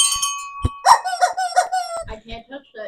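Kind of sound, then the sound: household object, small bell being rung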